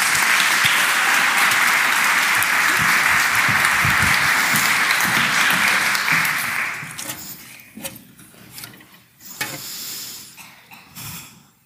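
A crowd applauds loudly and steadily, a dense wash of clapping that fades out after about seven seconds, leaving a few scattered claps and faint murmurs.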